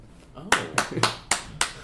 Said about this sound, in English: Oh. Who clapped? You said thank you, and you gave a speech. It seemed like the right time.